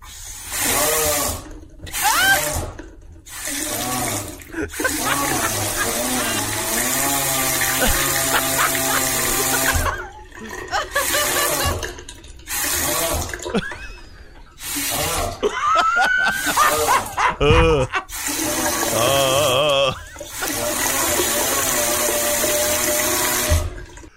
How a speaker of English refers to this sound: I have exclusive What Are You Kidding Me audio. Again, this is a faucet that sounds like a man who is moaning.